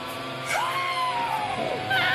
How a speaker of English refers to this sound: I love that scream, though.